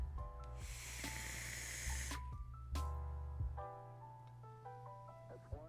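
A steady hiss of a 0.25-ohm vape coil in a Tokugawa atomizer, fired at 53 watts for about a second. Sharp crackles and pops pepper the hiss, then a few scattered crackles sound as it fades, over a faint tonal background hum.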